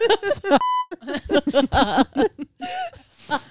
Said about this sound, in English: Oh, sorry. Beep.